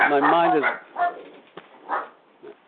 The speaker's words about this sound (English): My mind just went blank, and now I got dogs barking in my fucking head.